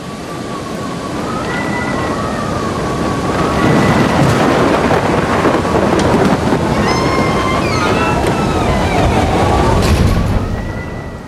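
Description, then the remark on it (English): A loud thunderstorm with steady, heavy rain and deep rolling thunder that swells through the middle and rumbles on continuously, filling the whole scene. “Can you believe that storm?”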